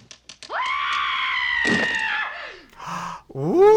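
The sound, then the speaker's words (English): A woman lets out a long, high-pitched scream that swoops up, holds steady for about two seconds and trails downward, with a few thumps before it and a thud partway through. “So this week, woman screaming is hit it.”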